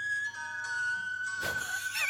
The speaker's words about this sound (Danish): Altså, fløjter hun med munden? Eller? Ja, ja, ja. Hun fløjter selv.